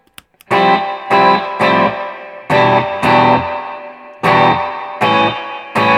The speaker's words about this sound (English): That wasn't even on yet? No, this is the Topanga Spring Reverb. Oh, I see. You just turned off the Fender tank, which has been on. Right, so that's dry.